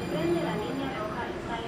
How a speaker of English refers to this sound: I'm here in central Houston at a metro rail stop in the Texas Medical Center. It's 5 p.m., and doctors, nurses, and hospital staff are streaming onto the platform to wait for the next train.